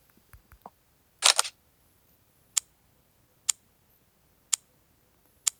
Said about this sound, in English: Now, notice that when I tap on the read text, we hear the camera click, the shutter of the camera.